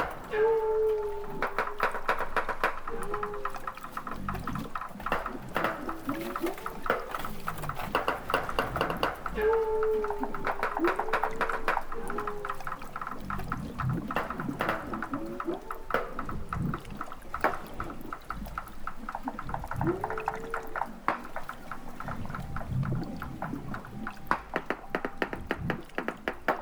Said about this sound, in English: Researcher Les Gilbert recorded this group of walruses off the coast of Alaska. Walruses have air sacs under their throats, which allow them to float in the water as they sleep and let them produce these underwater sounds.